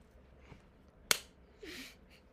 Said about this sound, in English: You going to tell them why your clap was so delayed?